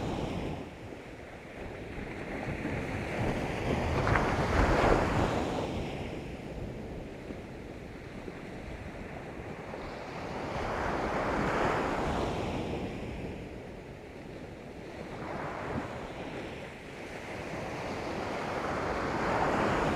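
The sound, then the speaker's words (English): Ocean waves break on the shore in a slow rhythm, three broad surges swelling and washing back over a steady roar of surf, with some wind rumble and no voices. “Maybe come with me over here and let's put our toes in the water.”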